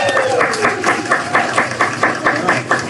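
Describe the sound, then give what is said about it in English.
A live crowd applauds performers steadily, many hands clapping in a dense, even patter with soft rhythmic swells, loud and sustained throughout without any talking. “Let's give them one more big round of applause.”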